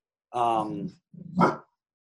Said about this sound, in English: My dog's getting mad about something. Hey, zip it.